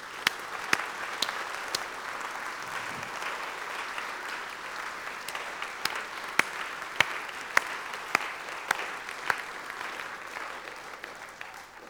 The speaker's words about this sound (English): Let's give a huge applause to all of our actors tonight.